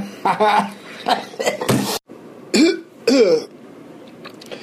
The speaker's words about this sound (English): Yep, still got that cough. If anybody else has some remedies that a doctor couldn't come up with, let me know.